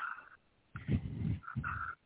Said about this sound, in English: Somebody breathing super hard. What is that?